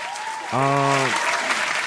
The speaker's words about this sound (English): But man, before we get into it, big shout out, man, to the Excitement Radio family. Can we get a round of applause for the family? Shout out to the family.